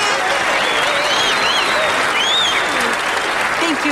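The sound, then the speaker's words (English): Steady, dense audience applause for guest star Madeline Kahn fills the whole stretch at a loud, even level, with a few faint cheers and whoops rising through the clapping. “So let's have a special round of applause for our guest star, Miss Madeline Kahn.”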